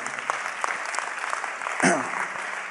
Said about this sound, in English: And I wish somebody would clap their hands and say amen.